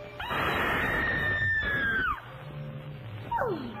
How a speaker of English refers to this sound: She would appear as if she was almost floating in a trance amongst a dry ice fog. She would get close to the camera and let out a piercing, shrill scream.